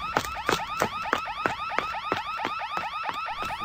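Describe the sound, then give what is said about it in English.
An alarm ringing continuously at a hotel, a rapid electronic warble punctuated by sharp, evenly spaced pulses about three times a second, steady and fairly loud with no voices. “How about I check out that alarm at the hotel?”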